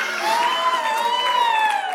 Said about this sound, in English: Some of you are like, great, that's awesome. Some of you are like, I don't know what I'm cheering for.